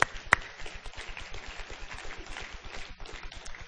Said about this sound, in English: But what's even more important is you got Jesus. He's your big brother. Amen. That's worth an applause right there.